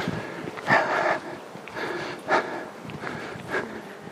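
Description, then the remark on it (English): A long-haired golden retriever named Molly snorts and breathes heavily, with three or four short, breathy bursts spaced irregularly across a few seconds and no one speaking. “Long-haired retriever.”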